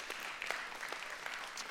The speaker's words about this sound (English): Yeah, give the Lord a hand clap.